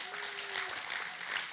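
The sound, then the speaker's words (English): A short spell of clapping from a group celebrating the official launch of Liliah Haven, a dense, steady patter of many hands lasting the whole moment, with a faint sustained tone underneath in the first half. “So yes, clap.”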